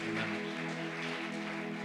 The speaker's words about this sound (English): Can we give one more round of applause for Anthony? Можно ещё раз поаплодировать, пожалуйста?